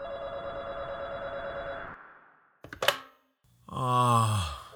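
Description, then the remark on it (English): A telephone rings steadily for about two seconds, then a sharp click like a handset being picked up, followed by a low, drawn-out groan from a voice. “I'm not dreaming the phone is ringing?”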